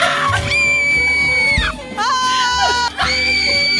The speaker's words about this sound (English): I can't believe this woman is yelling and not screaming.